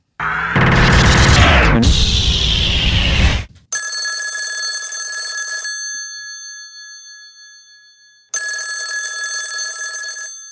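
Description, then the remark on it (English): A phone line rings out twice from the caller's end as a call is placed to a local bookstore in Lura, with two steady electronic ring bursts separated by a pause of silence, preceded by a loud burst of noisy clatter and rustling. “Join me as we pick up the phone and dial Megalong Books in Lura.”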